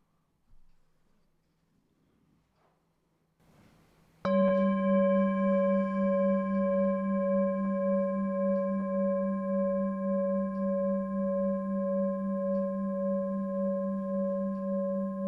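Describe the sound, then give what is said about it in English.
After a few seconds of near silence, a bell is struck once and rings on in a long, humming tone with clear overtones, staying loud and steady to the end. “Just by noticing the sound of the bell moving through time.”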